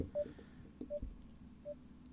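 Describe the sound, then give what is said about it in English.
A computer, unplugged and reconnecting to the internet during a call, emits three short, mid-pitched beeps spaced evenly about three-quarters of a second apart, fairly soft, over a low background hum with a few faint thumps. “I'm going to turn this down real quick just so it's not beeping.”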